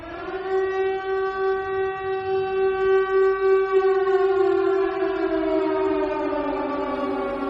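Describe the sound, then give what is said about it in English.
A civil defense air raid siren wails loud and steady, its rich droning tone holding for several seconds before sliding gradually downward in pitch as it begins to wind down, with no voices. “How does that siren make you feel?”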